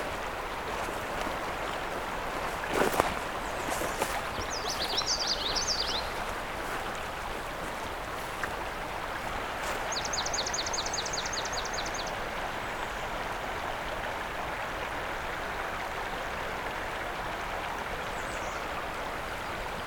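A steady, full rush of flowing river water fills the whole recording, constant, with a few bird chirps and a brief trill rising faintly above it.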